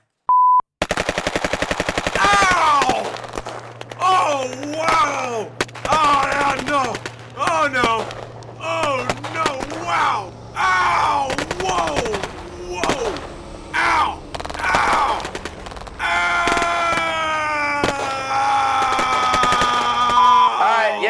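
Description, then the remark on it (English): Rapid bursts of loud gunfire crackle throughout, sharp repeated shots almost like a machine gun, while a man groans and cries out in pained, strained yells over the shooting, recording a wounded soldier voice take for the game Call of Duty: Modern Warfare. “So you're going to hear a few gunshots.”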